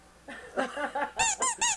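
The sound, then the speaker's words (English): A run of high-pitched squeaks, like a rat's, several quick chirps in a row, ending in three loud, sharp squeals. “Squeaky. So rat.”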